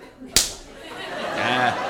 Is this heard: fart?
no